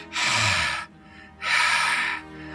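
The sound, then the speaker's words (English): A voice imitates heavy breathing: two long, loud, rasping breaths, separated by a short pause, with no talking. “So you hear this breathing, this...”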